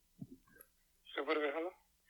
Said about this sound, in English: Ooh, that old-timey British phone. That British.